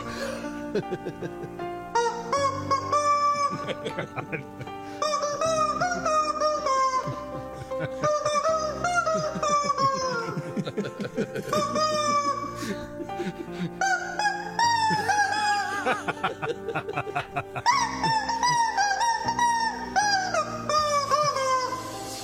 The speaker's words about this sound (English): That's the only sound? It's just him squeezing a rubber chicken? With a backing track, but the rubber chicken is doing the vocals.